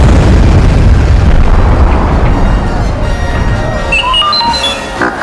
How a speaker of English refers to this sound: As Tion turns to watch him go, an explosion from the side of the building rains down a wall of rubble separating the two.